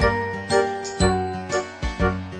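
A bright, tinkling bell jingle rings out in a steady rhythm, with a chime roughly every half second over sustained musical tones. No one speaks.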